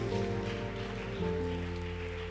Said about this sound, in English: If you are alive, shout your loudest amen and clap for Jesus.